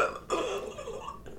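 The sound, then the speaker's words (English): A person imitates their own hiccup with a short, abrupt gulping vocal burst, trailing into a croaky, throaty sound with no other talking around it. “Hiccups always hurt me. Me too. That's why I wish I would never. They don't hurt me. Yeah. I go.”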